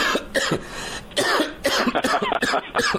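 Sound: coughing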